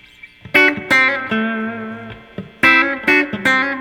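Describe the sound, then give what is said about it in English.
A clean electric guitar tone from the Fender Electric Clean amp preset plays a short phrase of plucked notes and sustained chords, bright, with no voices over it. “Sounds like electric guitar.”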